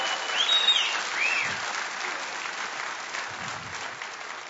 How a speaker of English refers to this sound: I hate golf claps. Can we please give God a big round of applause for being the God of hope?